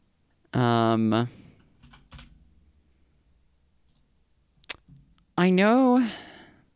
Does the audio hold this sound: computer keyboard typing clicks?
yes